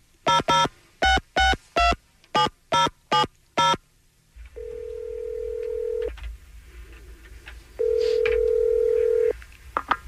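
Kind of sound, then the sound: signal or alarm, telephone dialing and ringing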